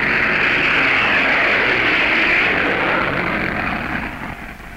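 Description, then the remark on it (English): A loud, broad roar of a low-flying German plane sweeps overhead, just clearing the ship's stack, steady at first, then gradually fading as it moves away. No voices. “Now planes are going overhead.”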